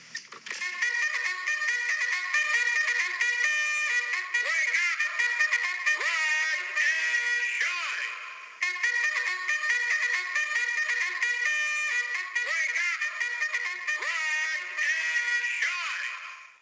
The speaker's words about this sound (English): And this is the noise you would hear from a batteryless alarm clock.